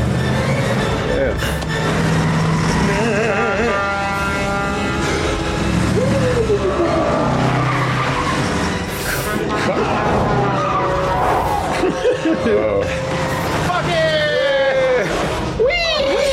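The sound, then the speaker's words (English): An oncoming car roars with loud, drawn-out tire squeals and skidding, the wailing screeches rising and falling for the whole stretch while voices mingle underneath. “A car was coming, so that fool said, "Fuck it."”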